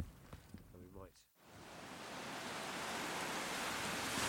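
Strong wind and surf roar on a rocky beach of barnacle-encrusted rocks and boulders, a loud, steady wash of noise that builds after a brief moment of a man talking at the start.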